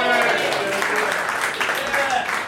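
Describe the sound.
Steady, dense audience applause fills the whole stretch, a continuous crackle of many hands clapping with crowd voices and cheers mixed in, holding at an even, fairly loud level.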